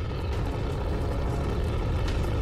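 A steady, loud roar like a jet passing overhead, dense and rumbling with heavy low end, holding at an even level for the whole stretch with no voices.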